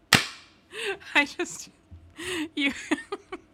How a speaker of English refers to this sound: Okay, let's do the clap. Let's get the clap. Let's make it clap.